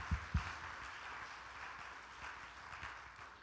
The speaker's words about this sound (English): Everybody clap your hands together.